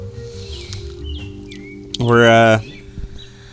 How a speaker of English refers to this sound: That bird is also loud.